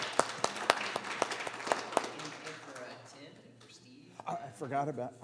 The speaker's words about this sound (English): First of all, I would like to take and give a big round of applause